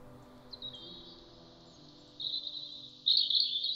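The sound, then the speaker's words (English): A European robin sings a thin, high, sustained song with no voices present. It starts fairly soft and grows louder in two distinct steps toward the end. “If you hear silvery, lyrical birdsong on a January evening, there is a good chance it will be a robin seeking its mate.”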